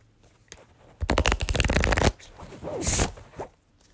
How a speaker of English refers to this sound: And this is the Wild Whiskers Oracle deck. And you can buy this on Etsy. And it's like a beautiful hand-drawn deck. Lots of like floral design on it and an animal on each card. So we're gonna shuffle.